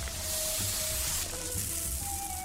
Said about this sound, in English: Hold on, I gotta dump out my shoes.